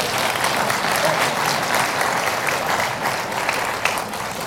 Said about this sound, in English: So thank you, guys. I appreciate that. Let's give these guys a hand clap.